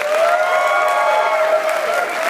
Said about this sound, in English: And again, everybody here at Alfred State College, thanks for hosting the Adam Ritz Show. Let's give yourselves another round of applause.